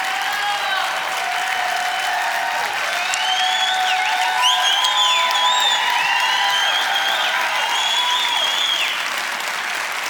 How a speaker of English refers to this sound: Come on up. You guys put your hands together and welcome Janet Porter.